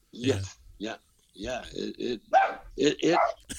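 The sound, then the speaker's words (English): A dog barks repeatedly in short, sharp bursts, about eight barks in quick, uneven succession, moderately loud. “Oh, there's my dog.”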